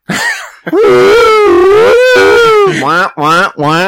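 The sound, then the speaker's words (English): A voice imitates a car alarm: a long, loud wail that wavers up and down in pitch, then three short repeated whooping bursts, with no other talk. “What is the sound? Like a car alarm.”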